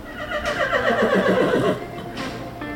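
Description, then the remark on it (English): A horse at a Juneteenth Black rodeo arena in Texas, where setup is underway, lets out a loud whinny lasting over a second, its wavering pitch shaking up and down before trailing off, with a faint background rustle and a brief clatter near the end. “drive just a few minutes to the arena, where setup for the rodeo is well underway. Hardworking cattle hands tend closely to the animals.”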